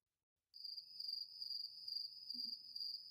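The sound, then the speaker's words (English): A cricket sound effect: a steady, high-pitched cricket chirp starts after a brief silence and trills continuously, clear, with faint low rustling beneath it and no voices. “I'll play some cricket sounds”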